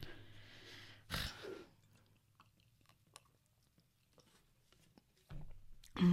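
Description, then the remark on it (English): Someone knocks back a shot, then lets out a sharp, breathy exhale, followed by quiet breathing, small mouth clicks and another loud burst of breath at the end. “there's out a lot of breaks of us just like taking drinks, so hope you enjoy us drinking and breathing.”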